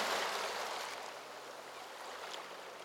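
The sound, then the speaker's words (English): Soft, steady wash of small waves lapping at a sandy sea shore at sunset, a gentle continuous hiss of water with faint splashes, fairly quiet and unaccompanied by voices. “The gentle sound of wavelets on the shore soothes your thoughts as you take in the beauty of this seascape.”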